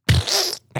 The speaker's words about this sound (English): Oh, man. Like fart noise.